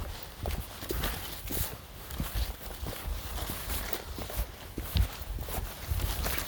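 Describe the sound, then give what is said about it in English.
Steady footsteps of someone walking outdoors, each step a sharp, knocking tap on a hard surface, repeating in an even rhythm over a low background rumble. No one speaks. “Gotta keep walking.”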